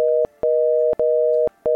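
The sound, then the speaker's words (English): A telephone busy signal from calling a house phone: a steady two-pitch electronic tone cutting on and off in a regular, rapid rhythm, clear with no voices. “I called the house phone, but was met with the busy signal.”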